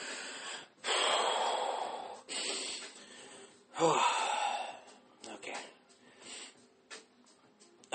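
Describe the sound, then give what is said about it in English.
A few loud, breathy bursts of sneezing and snorting sniffs from a sudden sinus attack, each a sharp rush of air followed by quieter sniffling, with a brief spoken word in between. “I haven't been sneezing this entire time, and all of a sudden, I'm getting like a sudden fucking sinus attack.”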